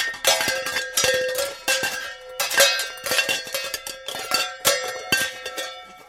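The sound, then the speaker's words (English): Metal pans clatter and rattle together in a busy, irregular run of bright clanks and ringing tones, fairly loud throughout and with no voices. “All right, and as we've rattled through those pans, it might have been a ghost coming of Christmas.”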